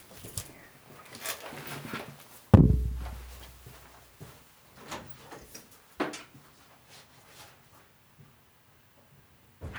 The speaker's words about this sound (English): Hold on, I gotta unlock the door for this man.